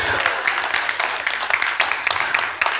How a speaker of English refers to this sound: If you're going to clap, do it well.